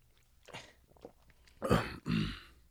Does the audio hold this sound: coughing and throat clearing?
yes